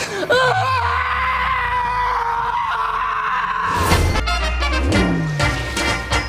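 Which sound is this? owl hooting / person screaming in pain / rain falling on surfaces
person screaming in pain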